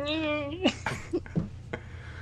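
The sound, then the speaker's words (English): A cat gives one drawn-out, tonal meow that rises at the end, followed right away by a few seconds of indistinct talking over a low background hum. “That cat wasn't thrown on them or anything. It looks like the cat. Did you like the noise behind it?”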